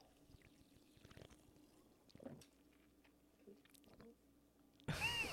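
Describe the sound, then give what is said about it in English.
Raspberry lime Trader Joe's sparkling water is poured, with faint trickling and small clinks, before a sudden loud, fizzy gush of liquid splashes out at the very end as it spills onto a woman's sweatshirt. “And then she spills it on herself.”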